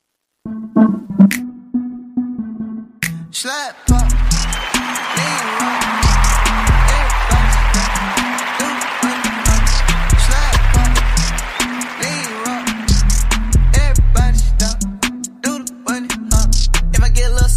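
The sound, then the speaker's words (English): A song kicks in after a few seconds of sparse sounds, playing loudly with deep booming bass, a steady punchy beat and vocals riding over the music to the end. “After I play this song, I'm getting off.”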